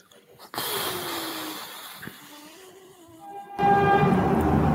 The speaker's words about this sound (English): What was that? Where's that noise coming from? Pretty loud all of a sudden. Yeah. With that said, with that car honk, nothing to add.